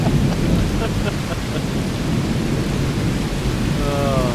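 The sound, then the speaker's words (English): Loud thunder from a nearby lightning strike rolls in a deep continuous rumble over steady heavy rain, with a faint voice briefly audible near the end. “I was going to say it was going to sound a little peaceful now that the sirens are off, but that was pretty much a strike down.”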